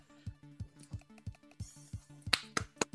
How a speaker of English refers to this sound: The sound of one man clapping.